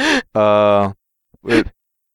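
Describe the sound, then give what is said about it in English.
Three loud snoring bursts from one man asleep in a room where others are laughing, each a throaty, buzzing breath, with a longer drawn-out snore in the middle and short pauses between them. “is still in the room and is now snoring.”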